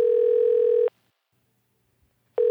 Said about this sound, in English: It's ringing. I hear that.